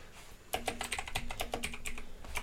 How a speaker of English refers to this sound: I love hearing you type. Already, yeah, I love that the whole audience can hear all your typing. I know, dude. It's because I have really fat fingers. And a loud keyboard, so, and your mic wasn't muted.